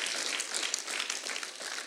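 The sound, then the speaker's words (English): A crowd applauds three men, a steady, dense wash of many hands clapping at once with no single claps standing out, holding an even level throughout. “Give it up for these three guys right here as we go.”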